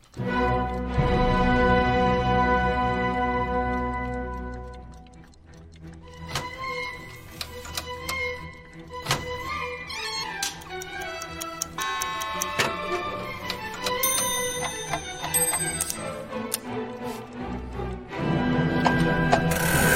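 Loud ratcheting clicks and gear-like ticking from a clock being wound and reset for daylight saving time, the mechanical clatter running steadily for the whole stretch, with some ringing tonal sounds underneath and no talking.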